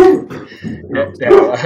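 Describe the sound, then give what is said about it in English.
A dog yips and whimpers in a few short, high-pitched bursts, moderately loud, with voices mixed in around the sounds. “whose dog is that?”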